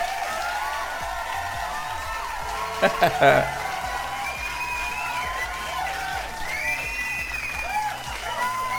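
audience applause and cheering

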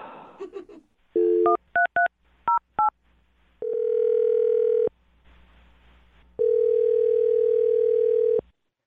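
telephone dialing tones

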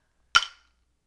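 glasses clinking

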